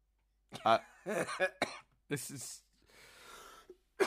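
A person coughs several times in close, loud bursts, with rough throat-clearing sounds and a breathy exhale between them, and a final short cough at the end.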